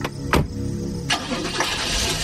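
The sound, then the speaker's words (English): A car engine cranks and turns over after a couple of sharp clunks, then settles into a steady rumble as a man drives the car away. “The smile faded, covering the jagged teeth, and he nodded to me just once, before getting in his car and driving away.”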